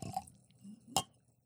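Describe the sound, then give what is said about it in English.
Wine glugs out of a bottle with an articulated ostrich skeleton on its label in two quick gurgling bursts, a wet, hollow splash at the start and a sharper gulp a moment later, with a low murmur between and no talking. “So this wine is delicious. Here you go. And listen to how this pours.”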